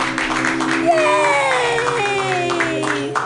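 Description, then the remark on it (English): An audience bursts into steady applause mixed with cheering and a few whoops, a dense, continuous wash of clapping, with voices talking and calling out over it. “Just clap for him.”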